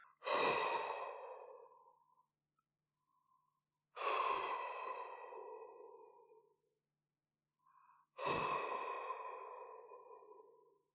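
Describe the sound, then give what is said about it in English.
A voice imitates heavy breathing: three long, loud, raspy exhalations spaced evenly about four seconds apart, each fading out, with short quiet inhales in between and no talking. “the sound of heavy breathing from somewhere in the bathroom.”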